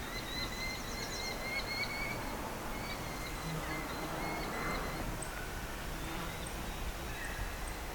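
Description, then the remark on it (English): Two Merlin falcons give rapid, chattering call series that overlap and repeat over a steady hiss of outdoor background noise, heard during a breeding bird survey. “For more than one Merlin even. There are two calling.”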